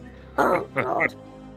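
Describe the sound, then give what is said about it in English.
A voice mimics a harsh, rasping cough: two loud, throaty bursts in quick succession, with brief silence after. “There's some sort of bomb thing swiggling about in the background, and it's making this terrible coughing noise.”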